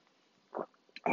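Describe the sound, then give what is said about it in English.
A quick slurping sip of coffee, a soft breathy burst followed by a brief pause and a louder, rougher slurp or swallow at the end, with no talking. “Just took a sip of my wonderful coffee.”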